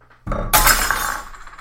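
A wine glass shatters with a sharp crash, a bright burst of breaking glass followed by a brief scatter of tinkling shards settling.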